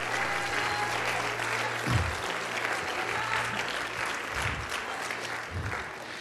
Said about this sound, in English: Somebody clap your hand and let's let it roar out. And let's let hell know.